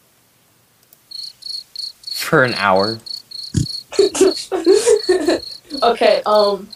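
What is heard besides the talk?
cricket chirping sound effect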